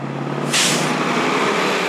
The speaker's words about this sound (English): Buses come and go every few minutes. Dozens of people get on and off.